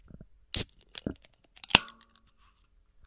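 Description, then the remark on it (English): A can of Spotted Cow beer opened up close: a few scratchy clicks on the tab, then one sharp, loud crack followed by a brief metallic ring and fading fizz. No talking. “This is a Spotted Cow in a can. You can now get it in a can. So here's what it sounds like up close.”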